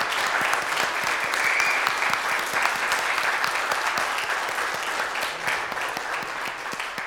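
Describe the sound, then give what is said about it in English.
A large church audience applauds steadily to celebrate newly baptized members, a dense wash of many hands clapping at once that stays loud and even for several seconds, with no voices standing out. “It is our joy to welcome our newest brothers and sisters in Christ, and I invite us all to give them a round of applause to celebrate with them.”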